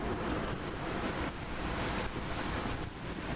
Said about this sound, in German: Ja, es schnieselt, würde ich es nennen. Oben auf dem Bahnsteig bleibt es als dünne Schneeschicht.